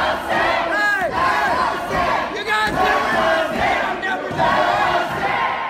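protest crowd shouting

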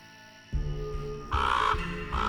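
raven cawing

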